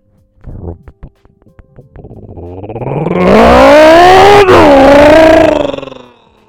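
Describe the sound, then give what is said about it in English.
A man vocally imitates a loud engine revving of a little truck with no exhaust, starting with a few sputtering pops, then building into a long, rising, roaring drone that swells, wavers and cuts off. “No, it's the fucking jerk offs with their little trucks with no exhaust.”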